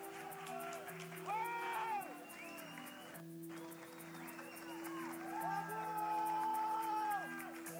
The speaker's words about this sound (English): The crowd starts cheering him on.